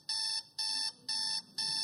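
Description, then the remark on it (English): An alarm clock beeps in a steady, repeating rhythm, four loud electronic bursts separated by brief gaps, with no voices. “Now maybe you wake up and you're familiar with this sound.”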